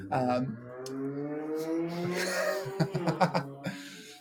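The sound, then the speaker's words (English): A motorcycle engine passes by outside, its droning whine rising steadily in pitch over a few seconds before a cluster of short, sharp bursts cuts in near the end. “You did not notice that motorcycle, I gotta say.”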